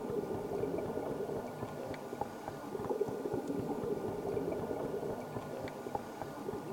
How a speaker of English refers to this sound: I've come up with a technique I call TTS, short for talking to sharks. Using my regulator, I make a consistent sound. I'll stop talking for a moment. You'll hear my clicks.